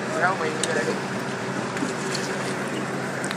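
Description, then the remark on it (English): A bus pulls up at a stop, its engine a steady rumble, with a few faint clicks and the murmur of people talking. “Okay, the bus has arrived.”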